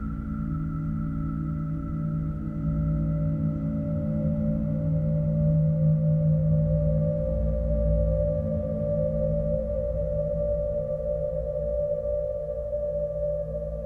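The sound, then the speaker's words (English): Dense, steady drones from a Russian Lyra 8 synthesizer layer low humming tones with sustained higher pitches, slowly shifting and beating against each other, loud and continuous with no voices for the whole stretch. “These sounds were made using an unusual Russian synthesizer, the Lyra 8.”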